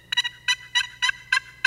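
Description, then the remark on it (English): A turkey box call rattles out a gobble imitation: about six quick, raspy, high-pitched bursts in an uneven rolling rhythm, fairly loud and with no talking. “But here's the box call.”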